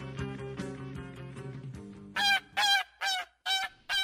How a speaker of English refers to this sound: It feels like I haven't heard those geese for quite a while.